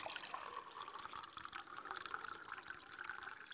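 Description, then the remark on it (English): Water is poured steadily into a glass, a continuous trickling and splashing that keeps going for several seconds with no one speaking. “I'm going to grab a glass for this. Not a magic trick, by the way, so don't get excited. I'm going to pour some water.”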